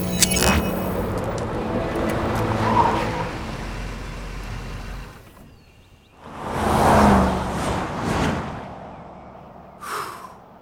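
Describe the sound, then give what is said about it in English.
A Jeep's engine rumbles steadily for several seconds, then cuts off before a couple of louder whooshing swells as it pulls off the road into trees, with no talking. “Spy car, pull over into those trees.”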